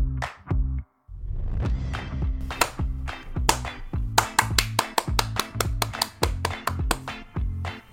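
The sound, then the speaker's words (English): A rapid run of sharp hand claps, sparse at first and then in a quick, fairly even rhythm, over a steady low tonal background. The claps mark spots in a recording where swear words will later be bleeped. “I'll see the annoying claps on the sound waves, and I'll know more or less where the curse will happen”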